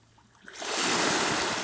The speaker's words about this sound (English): And those are small little waves from a beautiful body of water called Lago de Atitlan. Or for you gringos out there, Lake Atitlan.